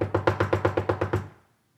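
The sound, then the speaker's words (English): Rapid, urgent, frantic knocking on a door in the morning: about ten hard, evenly spaced raps in quick succession, loud, then abrupt silence. “I woke up the next morning to frantic knocking on the door.”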